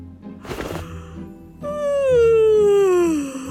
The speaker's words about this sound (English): After a long while, Ozzy Oinkers finally woke up yawning.